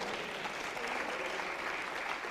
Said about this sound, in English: Will somebody clap their hands on that?